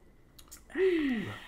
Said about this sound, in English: That's good, man. What you sipping on?